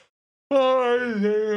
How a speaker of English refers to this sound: There we go with the yawning.